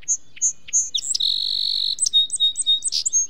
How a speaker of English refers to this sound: Almost anywhere in the United States, you can hear the song sparrow. People across the country have recorded this sparrow, one bird singing the same song in thousands of different soundscapes. An island off the coast of Maine.